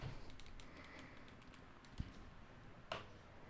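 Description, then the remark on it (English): Soft, irregular clicking of typing on a small computer keyboard, with scattered light keystrokes and a couple of sharper, louder taps, heard alone at a low level with no one talking. “Everything good I said about your little keyboard, I take it all back.”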